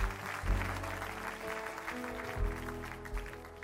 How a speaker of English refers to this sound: Would you give these wonderful people a great big clap offering? Amen.